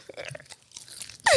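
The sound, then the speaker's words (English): Close, wet open-mouth chewing right against the microphone: irregular smacking and crunching bites in quick succession, ending with a sudden louder burst of noise. “We were just chewing in this mic. It's disgusting.”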